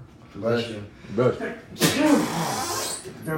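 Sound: sneeze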